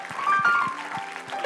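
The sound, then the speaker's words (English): An audience at a church worship service claps together in praise of Jesus, a dense, sustained wash of hand claps, with steady rhythmic thumps underneath and a faint held high tone running through. “Oh, come on, let's extend that hand clap, could we?”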